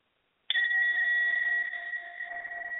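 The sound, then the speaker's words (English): After a moment of silence, a breath bowl is struck once and rings out in a steady, shimmering metallic tone with layered overtones that hum on without fading much. “I'm going to be using one of my breath bowls to help to move energy just for a moment.”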